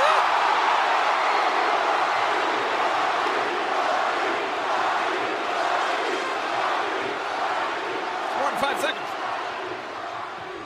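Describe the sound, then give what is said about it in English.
A huge arena crowd chants the wrestler The Rock's name in unison, a dense, steady roar of many voices that stays loud throughout, with a brief sharp burst near the end. “5 seconds of the people chanting The Rock's name”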